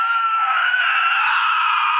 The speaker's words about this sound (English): The spirit let out a horrifying screech as the sound of crackling flames roared through the echoing halls.